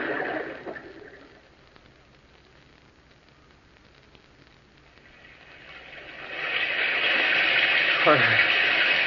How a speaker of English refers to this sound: I'm lost. There's no sun, only this rain.